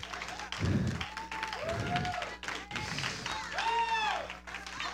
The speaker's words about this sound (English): Let's give God a hand clap of praise.